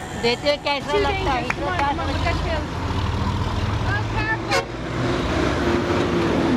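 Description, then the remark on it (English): Steady low road rumble from heavy trucks passing on a pitch-black road at night, with a brief horn-like tone, while voices talk over the traffic noise throughout. “It wasn't long before dodging in between trucks on a pitch black road became a bit too much for me.”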